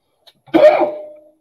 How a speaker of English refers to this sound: But excuse me while I cough into my banjo.